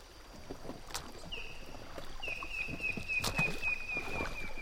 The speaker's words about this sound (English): It's better when we're out paddling on the water. The river is fast-flowing and muddy, but gentle for now. Altogether, there are 12 of us traveling in 3 inflatable rafts and 3 kayaks.